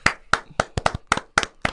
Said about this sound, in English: Put in the audience clap, or you're going to get that in post. No, we're low budget here. We're real low budget. Only for two claps.